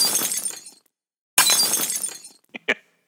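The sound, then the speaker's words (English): Two loud crashes of glass window smashing in quick succession, each trailing off into scattered shards, followed by a couple of small tinkling clinks of debris settling. No voices. “I'm gonna bring two windows, and one to smash over my head, and another one to jump through after I've smashed the first one.”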